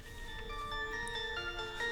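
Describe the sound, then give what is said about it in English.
A tinny royalty-free electronic beat plays through a small phone speaker, with sustained synth tones and steady melodic notes, thin and compressed with little bass, filling the moment without any voices. “This is bad quality because the beat's on my phone.”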